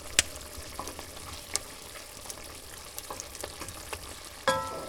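Steady sizzling of potatoes, carrots and meat frying in a black iron skillet over a fireplace flame, a dense crackling hiss with sharp pops and occasional scraping clinks as herbs and spices are tossed in and stirred, with no talking.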